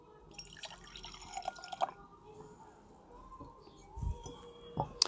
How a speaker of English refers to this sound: Let's taste it. Let me pour myself a glass so we can do a tasting.